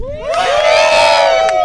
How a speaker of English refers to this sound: Yeah, so the hooting and hollering you're hearing is the people that came to the one-year anniversary camp out. I think they need to hear you louder, guys.